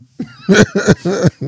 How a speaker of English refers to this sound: I need some water. I'm over here dry coughing. That shit hurt.